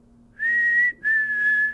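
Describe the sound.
A person whistles a bird-like call: two clear, steady high notes separated by a short break, the second one longer and dipping slightly in pitch, with no talking.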